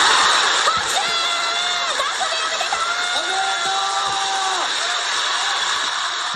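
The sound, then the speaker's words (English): A live television studio audience roars and cheers wildly and continuously, with shrill shouts and excited voices rising over a dense wall of noise, sustained throughout. “A live audience is on the other side, cheering wildly, and two announcers run up to him.”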